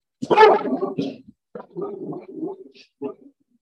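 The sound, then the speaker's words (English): A dog named Meraki, feeling scared, barks and yelps in a few uneven bursts, the first loud and drawn out, followed by shorter, quieter outbursts with brief pauses between them. “Excuse Meraki barking.”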